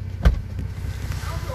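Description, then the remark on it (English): A car trunk pops open with one short, dull thunk, followed by a couple of faint clicks, all over a steady low rumble of an idling engine. “She said pop the trunk.”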